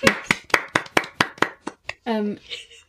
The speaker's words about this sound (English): That hymn number is correct. Interesting. Correct. Can we applaud that?